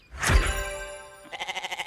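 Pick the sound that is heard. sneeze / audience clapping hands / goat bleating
goat bleating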